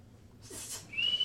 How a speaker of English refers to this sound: You're whistling? Yep.